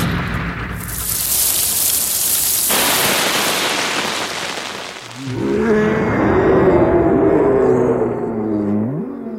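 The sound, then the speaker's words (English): Steady, dense rain patters on an umbrella for several seconds, fairly loud, in a film scene with Totoro standing in the rain; then a deep, wavering growl-like roar from Totoro, reacting to the rain on the umbrella, rises over the continuing rain. No one speaks. “And I like the way that King Totoro reacts to the sound of the rain on the umbrella.”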